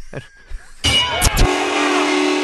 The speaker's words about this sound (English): That was the foghorn of football fun on the pirate ship.